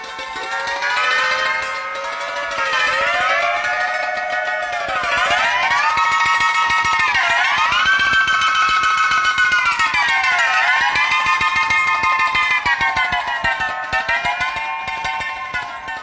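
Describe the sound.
A modern yangqin plays a steady, rapid tremolo whose pitch swoops and slides up and down, imitating the sound of the wind and the cry of a stork. The tone is bright and sustained, fairly loud, with no voices.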